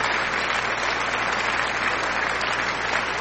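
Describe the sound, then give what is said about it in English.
A played applause sound effect: a steady burst of dense clapping from many hands at an even loudness throughout, with no voices rising above it. “hold on, let me play these applause for y'all.”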